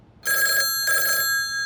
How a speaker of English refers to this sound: I was about to answer when the desk phone rang, and I shut up to hear the foreman's half of the conversation.